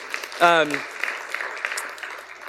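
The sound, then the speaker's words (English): A church audience claps to celebrate the many women who turned out to grow in their faith, a steady crackle of many hands, with a brief high voice cheering near the start before the applause carries on evenly. “Yeah, and we can clap for that.”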